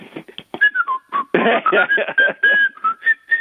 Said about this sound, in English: So can you whistle Dixie until I get back?